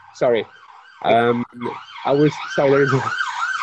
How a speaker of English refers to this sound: There is a siren.